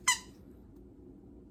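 A single short, high-pitched squeak from a squeaky dog toy, held up as a pretend microphone, sharp and loud at the start, then fading quickly into a low background hum.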